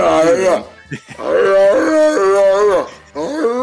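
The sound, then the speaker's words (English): A person's voice imitates a dog in heat howling and whining: several drawn-out, wavering wails that rise and fall, loud, broken by a short pause before a final howl. “It's like a dog in heat.”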